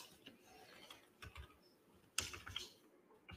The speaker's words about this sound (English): Keyboard's running a little slow. I don't know why. It can't keep up with my ass.